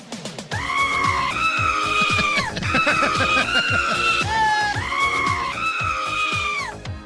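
Loud, strained goat screams bleat repeatedly in long wavering cries, edited into an upbeat pop song with a steady thumping beat and bass beneath them.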